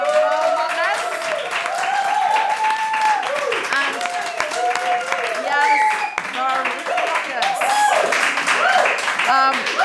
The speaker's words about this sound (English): In that case, can I have a huge round of applause?